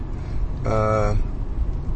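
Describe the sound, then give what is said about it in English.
Steady low road rumble from inside a moving car driving from a radio show, with a bus passing by as a brief, louder droning engine tone that swells and fades within about half a second. “We just went by a bus. We're in my car driving from a radio show”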